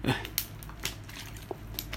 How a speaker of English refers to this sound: Let me drink me some water real quick.